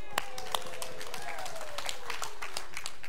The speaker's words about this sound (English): What a pathetic clap on that one.